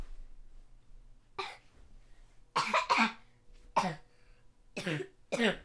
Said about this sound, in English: Yeah, go ahead. Cough the other way.